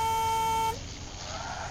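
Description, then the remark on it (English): A car horn blares a warning in one steady, loud blast lasting under a second as someone tries to cross a multi-lane highway, then cuts off, leaving the rushing noise of passing traffic. “A car screeches a warning as I try to cross the road, making me aware of my blurred vision.”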